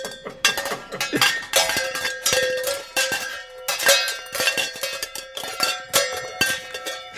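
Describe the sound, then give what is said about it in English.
Metal kitchen pans clang and bang against each other in a busy, irregular series of loud strikes, each leaving a bright ringing tone that lingers into the next, with no voices. “Well, much like Wilford Brimley's diabetes, think we should go to the kitchen and get some pans.”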